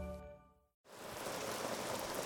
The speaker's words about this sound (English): Rain. And lots of it. Northern California has been inundated with storm after storm since the new year.